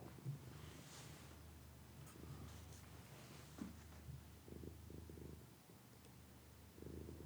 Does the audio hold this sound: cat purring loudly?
yes